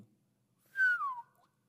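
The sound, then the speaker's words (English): A single loud human whistle, a sharp tone that glides downward over about half a second, followed by near silence. “I didn't know I was going to whistle that loud.”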